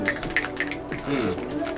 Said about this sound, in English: Yeah, let's get a good snap